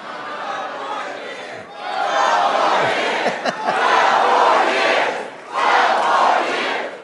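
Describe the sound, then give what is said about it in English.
A large crowd at a political rally in Hershey, Pennsylvania shouts the chant "12 more years" in repeated surging bursts, each swell of voices rising together, dipping briefly, then roaring back again for several rounds. “They start shouting now, 12 more years.”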